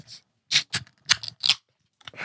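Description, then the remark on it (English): Beer cans are cracked open together by two people in a trailer inside a building, a quick run of sharp metallic snaps and bright, hissing fizz bursts, with no voices, just clicks and tearing hiss spread over a couple of seconds. “Rooster sponsors van sessions, not necessarily this podcast. Yeah. Maybe we'll get there at some point, but I'm going to crack them.”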